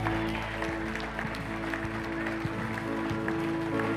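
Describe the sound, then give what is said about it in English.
An audience gives the Lord Jesus Christ a hand clap, a steady, dense patter of many overlapping claps lasting throughout, heard over a sustained low humming tone. “Let's give the Lord Jesus Christ a hand clap today.”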